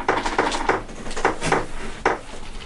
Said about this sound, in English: Okay. Stop playing with your chair.